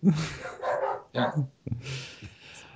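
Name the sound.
dog barking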